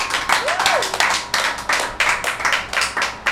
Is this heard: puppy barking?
no